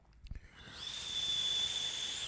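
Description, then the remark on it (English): A soft airy hiss of someone drawing on a vape fitted with a Recoil cap rises. Dragging at just the right velocity brings a thin, steady high-pitched whistle that holds through the rest of the draw. A couple of faint low bumps come before it. “This is the only cap I've ever had from the recoil where if I drag just at the right velocity, gives me a little bit of a whistle.”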